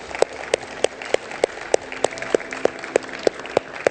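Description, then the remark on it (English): An audience applauds God after a prayer one morning in a dense, steady wash of clapping, with one sharp clap landing in an even rhythm about three times a second throughout. “Come on, let's give God a round of applause this morning.”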